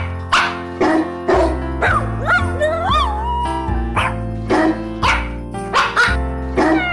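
Pitched dog barks follow a cheerful Christmas carol tune, one bark per note in a steady rhythm, over a sustained musical backing, loud and close.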